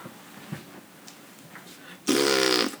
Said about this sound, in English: He just blew his nose. Okay, this is weird. Oh my god. He walked over to the mic and blew his nose in the mic.